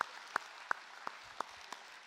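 Faint, sparse applause: about seven sharp claps at a steady, unhurried rhythm, each one crisp and separate, with no talking over them.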